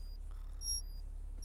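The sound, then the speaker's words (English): A faint, high electronic alarm tone sounds in short bursts, its thin pitch steady above a low, constant hum, with no voices: the mandatory 9 o'clock alarm under moonbase regulations. “This is the mandatory 9 o'clock alarm.”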